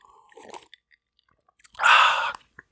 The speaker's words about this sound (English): I'm going to take a little sip here and let's talk about Jack Daniels. No, let's not. But in true Ronald D. Moore fashion, I'm going to tell you that I'm drinking Jack Daniels whiskey.